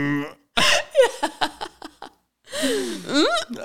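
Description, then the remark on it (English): A voice imitates a baby straining to burp: a short run of clipped, airy grunts, then a longer strained groan that dips and rises, fairly loud, with no words spoken. “It's like kind of like when a baby's trying to burp.”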